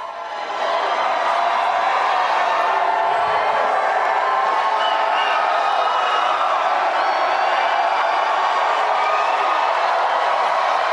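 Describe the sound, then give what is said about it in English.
A large crowd cheers loudly and steadily, a dense roar of many voices with scattered whoops and shouts rising over it, sustained without a break. “You hear that crowd? That's much bigger crowd.”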